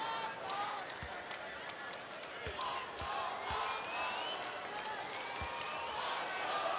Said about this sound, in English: A sparse gathering of Raptor fans chanting, "Let's go Raptors."